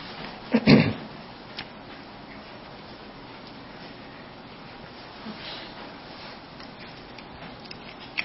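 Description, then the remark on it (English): A short burst of metallic jangling and clatter as keys are shifted aside, followed by a few faint scattered clicks against quiet background noise. “Let me get my keys out of the way here.”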